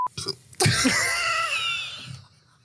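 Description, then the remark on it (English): A single loud, drawn-out burp into a microphone bursts in abruptly after a brief faint noise, rasping and voiced for about a second and a half before trailing off into quiet. “Now he's burping in the mic.”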